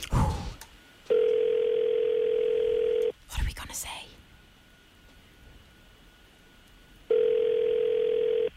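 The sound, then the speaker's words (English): A phone ringback tone purrs steadily, two long rings separated by a stretch of quiet, with a brief voice speaking between them, on an outgoing call to the Dildo Brewery. “Oh, it's ringing.”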